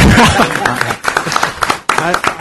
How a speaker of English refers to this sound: I feel like we should clap.